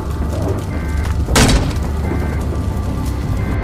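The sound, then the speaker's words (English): A single heavy bang, like something slamming against a shelter entrance as zombies bang at the entrances trying to get in, lands once over a constant low, rumbling background noise, with no voices present. “The vaccinated zombies are banging at every entrance trying to get into our shelter.”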